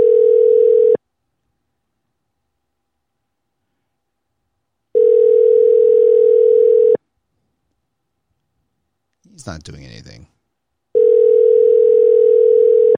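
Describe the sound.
A phone's ringback tone sounds through a speakerphone as a steady, loud buzzing hum in roughly two-second bursts separated by pauses, with a man briefly speaking between two of the rings. The call is placed late at night to a friend.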